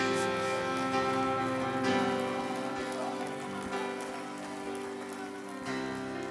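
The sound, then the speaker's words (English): An audience at a Pentecost Sunday worship service claps continuously for several seconds, a dense, steady wash of many hands, with sustained musical tones running underneath and no voices. “One more time, clap your hands.”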